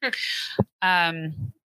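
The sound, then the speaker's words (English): Two drawn-out, high whining cries with a brief low grunt between them, fairly loud, a human voice imitating the whine of a Ciguapa, a creature of folklore, with no talking. “The only vocalization made by Ciguapas is said to be a kind of like a whine or a chirping.”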